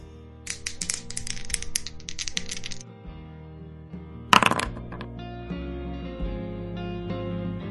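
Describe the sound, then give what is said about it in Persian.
A rapid rattle of dice clattering across a wooden backgammon board for a couple of seconds, then a sharp single clack, over a soft steady music bed. “امروز تخت آوردم بازی کنیم، فقط به شرطی که جرزنی نکنی. تو تاس میریزی یا من؟ تو بریز.”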